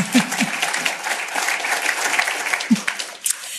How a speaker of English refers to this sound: 300 of those families have completely graduated off subsidy. Another round of applause for that.